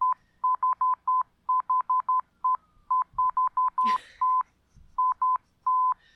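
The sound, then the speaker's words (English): A steady, mid-pitched electronic tone keys on and off in a fast Morse code pattern of short dots and longer dashes, with a brief rustling noise cutting in partway through. “Of course he uses Morse code.”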